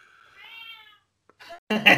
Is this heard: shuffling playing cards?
no